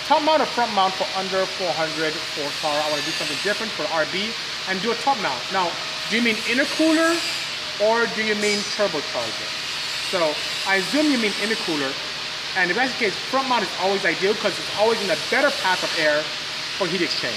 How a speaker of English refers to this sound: Sorry about the noise, guys. The guys are fabricating over there.